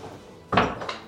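Two quick bursts of rushing air from large old bellows that need tuning but still work: a loud, breathy whoosh followed by a shorter, softer puff, with a faint wooden creak and no talking.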